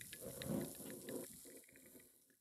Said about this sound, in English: If you think that sounds like too little soda water, you're crazy.